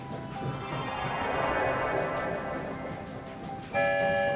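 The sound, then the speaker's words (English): A train rumbles and clatters steadily as it leaves a station, then a loud steam whistle cuts in near the end with two bright, sustained toots over the noise of the moving train. “There goes the sound of two whistles. We're on the move, headed for the Rainbow Tunnel that will take us far, far away.”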